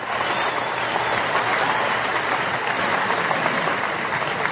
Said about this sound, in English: There he is, ladies. Let's give him a roaring round of applause. The great Joe Theismann.